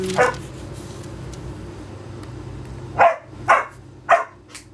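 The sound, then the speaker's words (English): A dog barks once, then after a pause lets out three more sharp barks in a quick, evenly spaced series, fairly loud over a low steady background hum. “I'm gonna get ugly with my dog here.”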